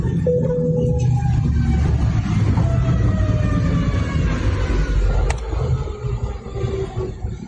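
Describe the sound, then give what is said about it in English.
A heavy airliner landing without its front gear rolls down the runway under hard braking, a loud, grinding roar with thin whining tones on top that begins to ease off toward the end as it comes to a stop. “Now it's going to be the front. And they throw those brakes on fast.”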